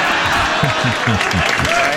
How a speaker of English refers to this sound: The crowd groaned.